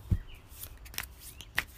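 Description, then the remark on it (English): Soft papery slaps and flicks of the Activate Your Chakras card deck being shuffled, a few brief crisp taps spread over a couple of seconds with no talking. “So what we do is we shuffle the cards, which I have been shuffling.”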